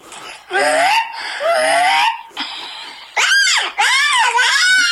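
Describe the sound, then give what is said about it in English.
A boy's voice does dinosaur impressions, trying to make them more accurate: about four loud, shrill growling squeals, each sweeping up and down in pitch, separated by brief pauses, with no other talk. “He's trying to be more accurate with his dinosaur sounds.”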